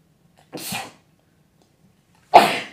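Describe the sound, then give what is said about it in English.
Two sharp sneezes separated by a quiet pause of nearly two seconds, the second one louder and more forceful than the first. No talking. “Sneeze. Hold on. Bless you!”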